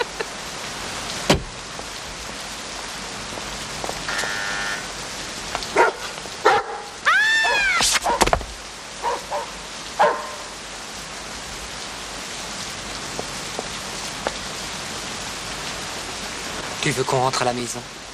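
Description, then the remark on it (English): Heavy, pouring rain hisses throughout while a dog barks and yips several times, with sharp bursts around the middle and a quick run of yaps near the end. “She gets out of the car and it's pissing down with rain, and then all of a sudden this dog knocks her over and steals her flowers.”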